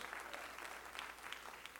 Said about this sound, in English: Praise God. Could you clap your hand to the Lord again in Jesus' name?